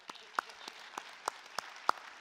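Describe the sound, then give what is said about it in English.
Light, scattered applause from a small audience: about eight separate sharp hand claps at an uneven pace, fairly quiet, with no talking over them. “Let's applaud.”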